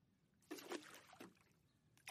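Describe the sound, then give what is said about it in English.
The oars of a small rowboat dip and lap gently against the water in a few soft, unhurried strokes as it is rowed near the shore, with a slow swishing splash on each pull in a quiet setting. “All you can hear is the gentle lapping of the oars against the water and the water against the shore.”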